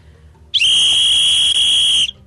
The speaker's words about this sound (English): Everybody needs to get a rape whistle.